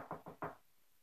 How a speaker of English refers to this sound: And they come across and then they knock on the door. There's going to be some added sound effects.